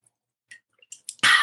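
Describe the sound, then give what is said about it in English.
Someone takes a quick sip of water: a few faint wet slurping clicks, then a sudden loud, breathy rush of air that fills the last moments. “And I'm just going to take a quick sip of water.”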